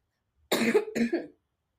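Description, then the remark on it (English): Two quick, harsh coughs in close succession, loud, with no talking around them, followed by silence. “I'm coughing.”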